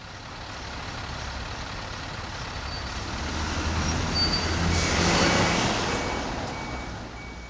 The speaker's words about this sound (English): An endless stream of red taillights stretch down and around the many twisting turns of Big Cottonwood Canyon. The traffic, slinking and slithering, is leading skiers back to the Salt Lake Valley after yet another Utah powder day.